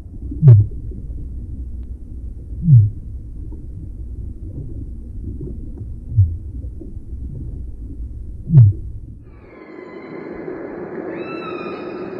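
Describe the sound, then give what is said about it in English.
A humpback whale's disco call underwater: four deep, punchy pulses roughly two seconds apart over a steady low rumble, then a higher, wavering tonal whine rising near the end. “And the other is the disco whale.”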